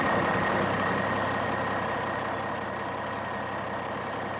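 A box truck's engine runs with a steady, continuous rumble and a faint whine on top, fairly loud, with no voices, as the truck drives to the city.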